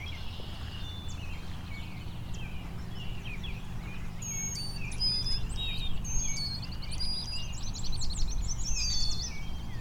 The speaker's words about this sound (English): northern flicker behind me, also competing here.